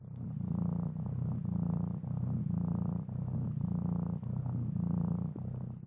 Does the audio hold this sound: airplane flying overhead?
no